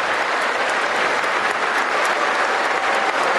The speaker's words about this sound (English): See, now, wait, did they clap when she stood up?